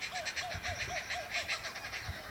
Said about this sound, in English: That's a lovely kookaburra. It's laughing down the creek.